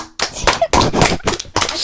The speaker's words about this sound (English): Clap.